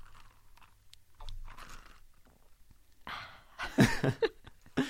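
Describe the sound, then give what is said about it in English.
Someone takes a sip of water: a wet sipping sound with crackly mouth noises and a swallow, coming in a loud burst over the final two seconds after a quiet, faintly rustling start. No one speaks. “This is me being Kendall Jenner as a gay woman taking a sip of water.”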